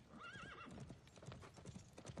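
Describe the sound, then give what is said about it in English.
A horse ridden bareback in a film sequence gives a short whinny, then hooves clip-clop in a steady rhythm, moderately loud against a rough, noisy background. “I think like on the weekends right before we did this, and he kept falling off, Eddie said, but he was able to stay on it for that sequence.”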